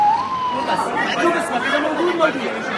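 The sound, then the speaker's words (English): Sirens wail from a convoy of ambulances taking severely wounded Palestinians to a field hospital and to hospitals in northern Egypt, their pitch sliding steadily, while a crowd chatters continuously in the foreground throughout. “the first Palestinians, 81 of the most severely wounded, those desperate enough for urgent surgical intervention, taken one by one in a convoy of ambulances to a field hospital set up a few miles away and to other hospitals in northern Egypt.”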